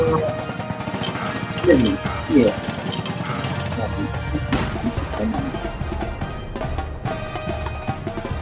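A cannon fire sound effect: two quick, loud thudding booms close together, then another sharp hit, over a dense, busy layer of background sound that never lets up.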